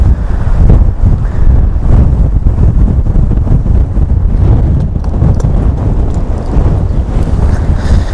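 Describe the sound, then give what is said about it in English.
Strong wind roars steadily across the microphone outdoors by a river, a dense, low rumbling buffet with gusty surges throughout and no voices, like a heavy gale. “Okay, the wind completely blew it over and now it is in the river.”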